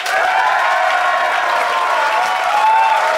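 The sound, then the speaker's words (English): A crowd applauds to vote that Fanshawe and Ellis' arguments win, clapping steadily and loudly in a dense, even wash of applause that holds at the same level for the whole few seconds, with faint cheering mixed in and no clear talking. “But if you think Fanshawe and Ellis' arguments win the day, applaud now.”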